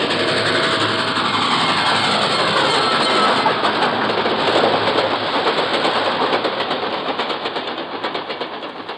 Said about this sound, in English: Then, dimly, I can make out an approaching roar, another train heading right for me.